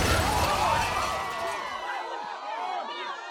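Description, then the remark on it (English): A loud crash of heavy impact and shattering glass as a car plows through a group of people standing outside a coffee shop and into the shop, quickly giving way to a chorus of panicked screams and shouting that trails off. “A fresh volley of cries pierced the air as glass and blood flew.”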